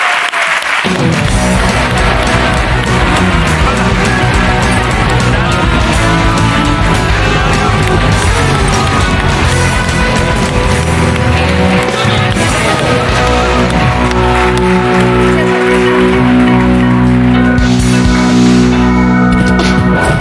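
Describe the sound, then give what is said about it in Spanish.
A studio audience on the show La Resistencia applauds loudly and steadily for about twenty seconds to welcome guest Irene Arcos, the clapping blended with driving live band music that plays throughout without a break. “Vale, un aplauso para Irene Arcos en la Resistencia, joder, ¿qué tal?”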